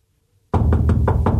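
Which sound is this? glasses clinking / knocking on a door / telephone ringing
knocking on a door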